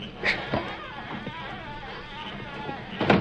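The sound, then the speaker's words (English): A wooden corral gate creaks open with a drawn-out, wavering groan over steady background noise, framed by brief louder scrapes at the start and end. “Doggone gate. Creaks like a wailing catamount.”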